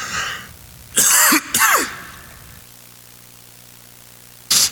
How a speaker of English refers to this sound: I'm about to cough.